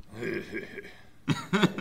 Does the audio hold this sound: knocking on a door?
no